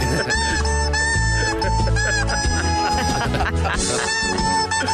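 A squeaky rubber chicken honks out a tune in shrill, pitched squeals, loud and close, with a steady music accompaniment underneath and no pauses.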